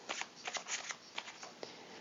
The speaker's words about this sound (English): Okay, so I'm just giving the cards a little bit of a shuffle.